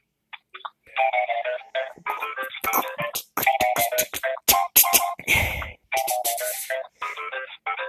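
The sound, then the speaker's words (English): A bright, electronic phone ringtone obtained from iTunes plays a quick, bouncy melody of rapid chiming notes, fairly loud, with a brief noisy burst partway through and no one talking. “So where did you get that ringtone?”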